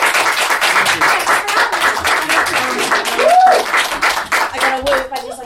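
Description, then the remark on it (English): An audience at the end of a show claps steadily in a dense burst of applause, voting for a costume in a costume competition, with a few whooping cheers rising above it near the end before the noise starts to thin out. “Big number of clap and woo.”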